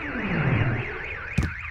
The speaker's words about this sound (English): Hey, Uber Dude, before I surrender, why don't you turn off the alarm? I wouldn't want your Uber hearing to be damaged.